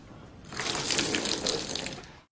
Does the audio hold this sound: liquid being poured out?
yes